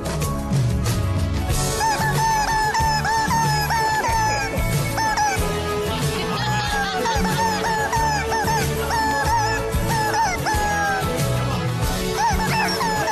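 A rubber chicken toy squeaks out a melody, its shrill, honking squawks rising and falling in pitch over a steady, loud backing track with bass and drums.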